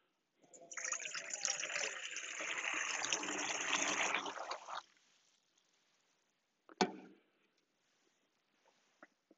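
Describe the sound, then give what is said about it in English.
Holy water pours and trickles steadily for about four seconds, a splashy rush that then stops, followed by a sharp knock and a few faint clicks in near silence. “At this time, as we look at the holy water, I would like for you to take a moment of prayer.”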